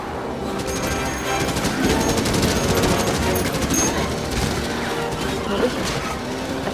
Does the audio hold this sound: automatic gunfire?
yes